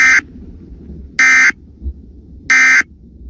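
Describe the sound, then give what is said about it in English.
A loud electronic alert tone blares in three evenly spaced bursts, each a harsh buzzing beep lasting about a third of a second, separated by low rumbling background noise. It is a cyclone weather alert at Jack Rice Stadium, warning of a strong storm approaching. “This is a cyclone weather alert.”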